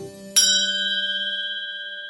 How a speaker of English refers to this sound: Right then, a bell rang at the counter. My Panzerotti was ready.